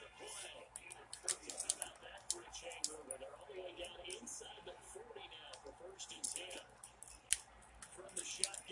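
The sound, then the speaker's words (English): Rapid, irregular clicking of game controller buttons, square and circle, while playing a football video game, light plastic taps in quick bursts over a faint background hum, with some soft, indistinct voices. “I kept clicking square in a circle.”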